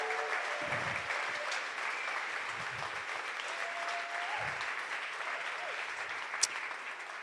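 A crowd of people in Lurgan claps steadily and continuously to welcome a speaker, a dense, even patter of applause that holds for several seconds, with a few faint murmurs and low thumps mixed in.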